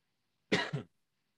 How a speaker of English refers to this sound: Pardon me, I didn't hit my mute button on the thing, but so we got a little cough there.